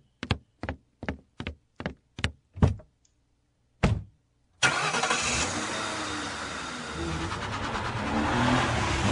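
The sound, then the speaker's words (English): A run of sharp, evenly spaced knocks and a pause give way to a loud, steady roar of an aqua Geo Metro's small engine as the car tears down the road, droning on to the end without any talking. “I see his aqua Geo Metro tearing down the road.”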